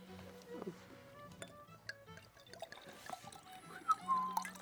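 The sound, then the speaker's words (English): A small amount of water trickles and pours into a glass of Dalmore whisky, with a few light clinks and a faint rising ring as it fills. Murmured voices sit quietly underneath. “Do you want water in yours or no? I will put a drop of water in mine.”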